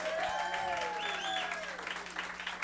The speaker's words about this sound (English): Before we get into that, how about a round of applause for your server tonight,